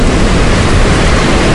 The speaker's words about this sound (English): I wouldn't be the swimmer, but I just love the beach and the waves and everything.